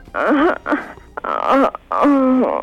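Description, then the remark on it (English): A woman moans in three loud, drawn-out bursts, her voice sliding up and down in pitch, each separated by a brief pause. “And you pop the bubbles while moaning.”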